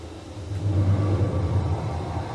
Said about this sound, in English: A car was driving away from the farm, headed in the same general direction as I was.